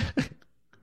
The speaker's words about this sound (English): It was a dog barking or something, maybe. I don't know. Someone sneezed.